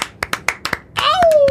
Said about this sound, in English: Let's give a little baby round of applause for Diego Tinoco.